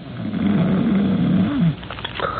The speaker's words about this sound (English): From beyond the curtain and the other bed in the room, from the big, heavily muscled, early middle-aged man in it, comes a rhythmic and ear-shattering snore.